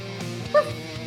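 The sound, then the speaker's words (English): A pug named Doug lets out one short, sharp bark partway through, standing out over a steady low background hum. “With that 16, Doug will quiet his barking for a hot moment and then just go.”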